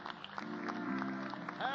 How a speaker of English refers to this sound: Let's give the Lord one more hand clap tonight. He's worthy of our praise.